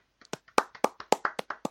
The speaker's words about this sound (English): Yes, we should say congratulations to Lewis Hamilton on becoming a four-time Formula One FIA world champion. Of the world. So, well, round of applause.